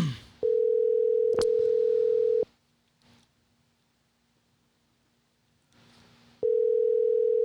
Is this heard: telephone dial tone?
yes